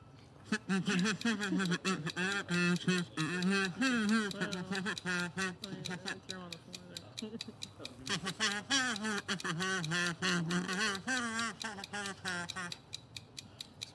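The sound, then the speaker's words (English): A buzzy kazoo hums a wandering melody, its nasal tone sliding between notes for about fourteen seconds with only brief pauses. “Kazoo us!”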